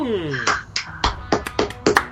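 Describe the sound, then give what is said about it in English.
About seven sharp hand claps in a slightly uneven rhythm, each a crisp, bright slap, following a brief bit of voice at the start. “Oh, I'm clapping.”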